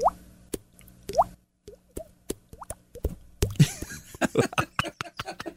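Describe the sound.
Someone imitates dripping water by clicking a finger against the side of the mouth: hollow, rising-pitched plops, first a few spaced drops, then a quicker, busier run of overlapping pops. No talking.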